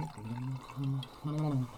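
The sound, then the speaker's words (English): Wine pours from a bottle into a glass in three gurgling, glugging bursts, each with a short pause between. Fairly loud, with nothing else in the background. “Oh, that's a wine pour.”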